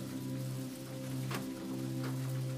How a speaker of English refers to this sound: The rhythm of the rain accompanies the tranquility that pervades the space, offering a gentle symphony of calmness and relaxation. The soft pitter-patter on the rooftop delivers you to sleep